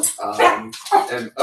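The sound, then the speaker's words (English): A female dog barks several times in quick succession, fairly loud, with short pauses between the sharp, voiced yaps. “At least she's not barking at me this time.”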